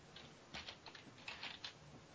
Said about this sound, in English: I'm typing at the same time.